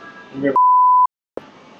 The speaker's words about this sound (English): I'm going to beep all their names.